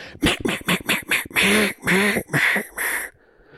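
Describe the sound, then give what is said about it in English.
A rapid run of loud duck quacks, about five short clipped ones followed by four longer drawn-out calls, with nothing else in the background. “It's duck season.”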